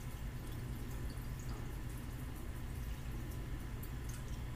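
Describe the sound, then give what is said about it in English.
Cold water pours steadily from an Arizona green tea bottle into a blender for a few seconds, a continuous splashing and trickling sound with no one speaking. “And after that, I add water. Well, this says Arizona green tea, but I put water in there so it's cold. And I put it in.”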